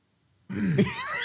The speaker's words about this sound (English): I had to clear my throat, and I was trying to get it all out before I cleared it.